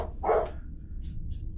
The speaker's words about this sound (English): What is he barking at? What is Bo barking at?